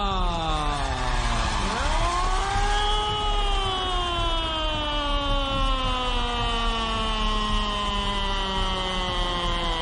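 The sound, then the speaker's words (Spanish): A loud ambulance siren wails, its pitch sweeping up sharply and then gliding slowly down in one long continuous tone over a low engine rumble, with no voices. “La ambulancia, la sirena, todo lo que haga falta.”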